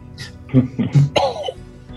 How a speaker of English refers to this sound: Turn your head to the left and cough.